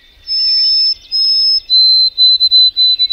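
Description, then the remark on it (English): A white-throated sparrow sings pure, high whistles: two long held notes, then a run of shorter repeated notes on a steady pitch. Clear and alone, with no talking. “It wasn't until my grandparents got one of those wall clocks with a different bird singing every hour did I learn the more common name, white-throated sparrow, at exactly 8 o'clock.”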